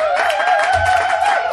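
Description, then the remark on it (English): An audience at a live literary debate show in Chicago claps steadily for a second and a half as a writer is welcomed to the stage, a dense, even wash of applause with a sustained high cheer or whistle running through it. “Clap.”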